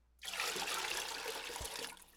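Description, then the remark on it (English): A steady rush of holy water pouring or trickling starts abruptly and runs for about two seconds before cutting off, with no voices. “I think we have enough holy water to proceed with the episode.”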